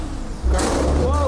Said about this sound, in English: Oh, yeah, there's a spike on there. That's all right. Just some trash trucks in the background. Nothing to be so scared of or nothing to be frightened by.